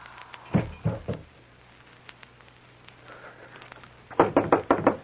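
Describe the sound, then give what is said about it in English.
Two bursts of firm knocking on a door: three sharp raps, a pause with a faint low hum, then a quicker run of five loud, distinct knocks. “The door. Someone there.”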